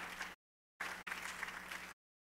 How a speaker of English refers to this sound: Somebody ought to clap and put their hands together for the Lord.